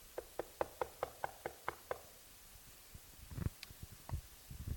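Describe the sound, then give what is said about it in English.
A quick, steady run of about eight crisp knocks on a door, followed by a pause and some softer, scattered thumps and shuffling noises. “Like, he's knocking the door as who?”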